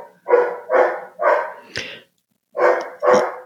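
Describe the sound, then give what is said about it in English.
A dog barks six times in quick, evenly spaced bursts, pausing briefly before the last two, loud, with no one talking. “Oh, my dog's barking right now.”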